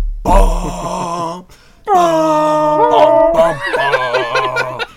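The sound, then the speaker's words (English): A voice imitates the roar of the Bazelgeist, a monster likened to an air raid dragon, as a loud, wailing, siren-like howl in three sustained bursts, the pitch wavering and sliding up and down. “It's like the air horn dragon. The air raid dragon.”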